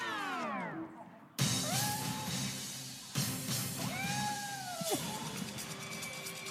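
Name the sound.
cats meowing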